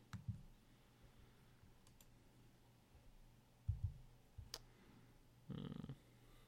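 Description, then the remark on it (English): Several sharp, isolated mouse clicks and double clicks, made while trying to enlarge a Skype window, sound at irregular intervals, interspersed with a few low, muffled thumps; no one speaks. “You may have to click or double click on it if it's like down in a corner or something.”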